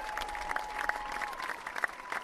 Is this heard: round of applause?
yes